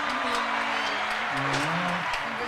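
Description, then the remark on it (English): A steady wash of clapping hands, like a canned applause effect, with a voice whooping or humming in a low, wavering tone underneath. “Hold on. Hit the applause.”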